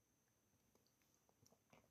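A quiet sip of water: a handful of soft, wet mouth clicks and a gulp spread over two seconds, a bit louder toward the end, with no talking and a faint steady whine underneath.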